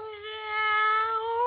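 A single long, steady meow, voiced by a person imitating a cat, holding an even, bright tone for over a second, moderately loud with nothing else around it.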